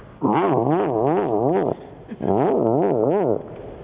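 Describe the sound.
A voice imitates a car starting, as an impression of Michael Winslow of the Police Academy movies: two loud bursts of wavering, buzzy vocal cranking, the pitch rising and falling rapidly, separated by a short pause.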